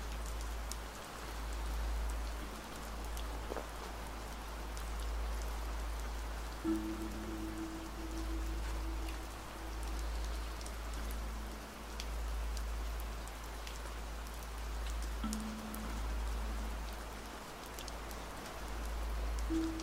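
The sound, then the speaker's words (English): Steady rain falls and patters on a surface, a dense continuous hiss with scattered drops, even in level, with a faint low hum running beneath it and no voices. “Just feel all that rain on your face, on your chest, on your arms, on your legs, on your head, and on your heart as well.”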